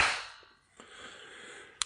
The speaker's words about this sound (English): You know a good clap when you hear a good clap. Now that's impeccable timing.